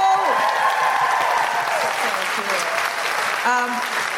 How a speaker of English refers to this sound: First, a huge round of applause for Rachael Wiseman and Kemah Bob.